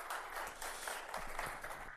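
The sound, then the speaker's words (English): A crowd applauds steadily to welcome a woman coming up to speak, with dense overlapping claps forming a bright, sustained wash of sound at even loudness throughout, no voices standing out. “Give her a hand of applause and welcome her.”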